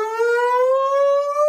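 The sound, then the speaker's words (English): A man howls with his mouth in imitation of a police siren: one loud, sustained wail that rises slowly in pitch, with no talking around it. “Not with a siren, but with his mouth and his howl.”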